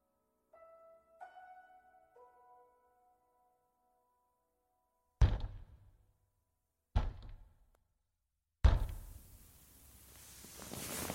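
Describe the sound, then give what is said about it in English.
A soft chiming tone sequence, then someone knocks on the front door of a house: three heavy, booming knocks, slow and evenly spaced and loud, the last blow trailing into a swelling rush of noise. “Was that the front door?”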